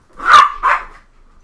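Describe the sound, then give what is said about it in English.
A dog barks twice in quick succession, loud, the two sharp woofs separated by a brief pause with no talking. “Yes, I will put the dog outside.”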